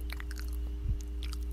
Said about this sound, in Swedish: Och nu äter jag en avokado här i min mun. I din mun? Ja. Okej, okay, lite ASMR för er som gillar smask.